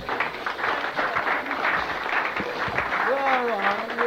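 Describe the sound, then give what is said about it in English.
A crowd applauds steadily for a few seconds for the next speaker, a dense wash of clapping from many hands, while a voice rises over it near the end. “Give her a good clap.”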